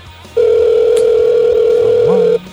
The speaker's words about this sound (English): It's ringing. We got it.